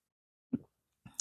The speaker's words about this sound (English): here are my words, raw in the morning, first thing, and we're doing it over coffee. So I'm going to take a minute for a sip.